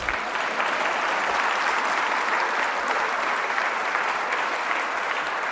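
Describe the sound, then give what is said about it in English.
A large audience at an event hosted for Professor Larry Gibson claps steadily for several seconds, a dense, even wash of applause that stays loud throughout with no talking over it. “You can clap.”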